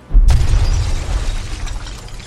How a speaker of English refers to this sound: you watch as the Vesconoth comes crashing down towards the ground a little bit away from you, and these machines just rain down around.